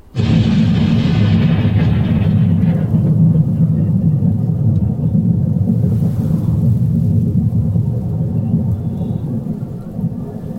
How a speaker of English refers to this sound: But not before we were caught in a freak storm, the kind designed to scuttle an entire fleet.